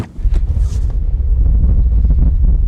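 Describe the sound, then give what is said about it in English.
Sandstorm wind in Death Valley, with gusts of 45 miles an hour, roars and buffets steadily through an open door with a deep low rumble, gusting loudly with brief hissy bursts near the start, no voices present. “There's a sandstorm. I'm not talking a little bit of sand. There are 45 mile an hour gusts.”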